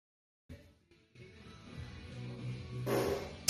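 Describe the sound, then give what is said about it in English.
A drawn-out, low, buzzy fart plays back faintly from a recording on a phone, followed by a brief hiss and a sharp click at the end. “Oh, I totally missed that fart.”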